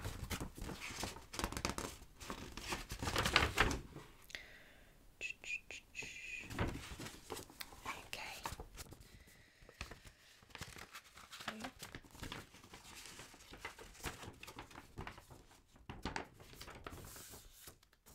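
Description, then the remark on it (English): A paper map crinkles and rustles as a hotel service manager unfolds and handles it to show a guest where they are, with bursts of crisp crumpling and a few sharper crackles over about eighteen seconds, fairly quiet throughout. “Okay, so let me just show you where we are on the map, just so that you can get your bearings and then you can begin to explore.”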